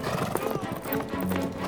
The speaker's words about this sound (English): It's a winter's day in Central Europe. Leopold, Duke of Austria, is out riding with a few of his favourite knights. Their horses' hooves drum a rhythm on the hard ground.